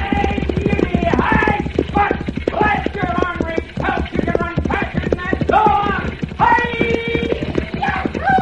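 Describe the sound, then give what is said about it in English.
Stagecoach horses galloping hard down a mountain road, a loud, dense run of rapid hoofbeats pounding steadily throughout, with strained, wavering cries rising and falling over the clatter. “See, and the stagecoach coming down the mountain road. Come fast, it's going.”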